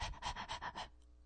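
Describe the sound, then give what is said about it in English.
A squeezed toy puppy gives a rapid run of about six breathy, panting dog sounds in a steady rhythm, then falls silent. No one talks. “And it turns out that when you squeeze the puppy, it goes ruff, ruff, ruff, ruff, ruff, ruff, ruff, ruff.”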